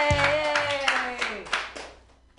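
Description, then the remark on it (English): A small group claps in scattered bursts for a woman who has just finished her first comedy set, while a voice cheers loudly over it, the applause fading out toward the end. “Keep clapping because it was her first time.”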